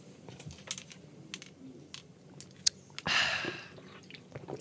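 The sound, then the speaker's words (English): A quick sip of a drink: soft mouth clicks and small wet noises, then one short slurping gulp partway through, with no talking. “Visual bit. Quick sip.”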